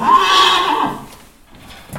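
A Knabstrupper horse lets out a loud whinny lasting about a second, its pitch wavering before fading, followed by quiet shuffling and a soft snort near the end. No one speaks.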